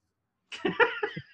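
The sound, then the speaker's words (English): A sudden voiced sneeze that breaks into several quick, stuttering bursts over about a second, moderately loud and heard alone with no talk around it. “Bless you.”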